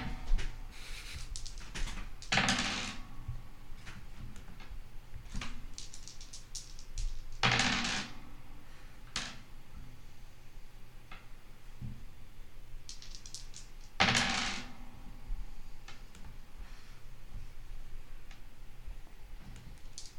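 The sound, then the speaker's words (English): Dice clatter across a hard tabletop in three louder bursts during a tabletop game, with scattered small ticks and clicks in between against a quiet background. Nobody speaks. “This is a lot of dead silence. Of dice rolling.”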